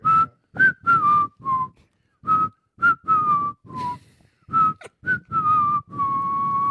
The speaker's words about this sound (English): do your whistle